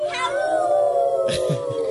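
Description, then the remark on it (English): A group of Cub Scouts yells loudly in unison on a count of three, a sustained high-pitched shout of many voices held steadily for about two seconds. “You guys ready to yell really loud? One, two, three.”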